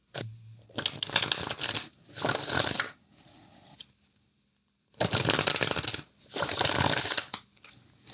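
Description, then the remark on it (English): A Thoth tarot deck being shuffled for a tarot reading in four quick, crisp riffling bursts, in two pairs separated by a brief pause. The papery flutter is fairly loud, with no talking over it. “Oh, before we go any further, we got to do our tarot reading.”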